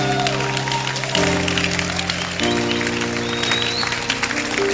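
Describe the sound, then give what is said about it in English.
A church audience claps hands for Bishop Aso in a steady, dense patter while sustained organ-like chords hold underneath, shifting to new notes every second or so. “You can clap your hands for he's a very anointed man.”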